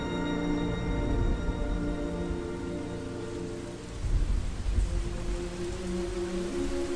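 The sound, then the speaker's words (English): Steady, heavy rainfall hisses throughout, with a deep rolling rumble of thunder swelling midway before the downpour continues on its own. No voices are heard. “And then the rains came down.”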